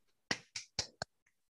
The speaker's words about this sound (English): I didn't mean to clap. But it was for effect.